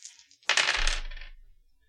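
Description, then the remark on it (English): Dice, rolled for a charm roll, rattle and clatter across a hard surface in one loud roll lasting about a second, then tumble to a stop. Nobody speaks. “But let me find dice.”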